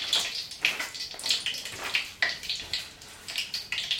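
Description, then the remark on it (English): A garnish crackles and sizzles in hot oil, a steady hiss broken by irregular bright pops and spitting bursts, with no voices. “It'll cause a bit of a crackle, but anyone listening will be like, what did she just do?”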